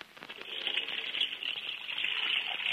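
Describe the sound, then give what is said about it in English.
Water splashes and churns steadily in a dish pan as a man washes dishes with soap in a kitchen, a continuous hissy rush that swells slightly toward the end, with no one speaking. “he's decided to be helpful and wash the dishes she left in the kitchen.”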